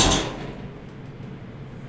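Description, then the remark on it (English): A refrigerator door shuts with one short, dull thump that fades quickly into a faint low hum, with no voices. “There's my refrigerator, guys.”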